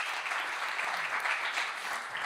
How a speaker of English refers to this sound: Extra clap there, thank you. The last clap. Attention seeker.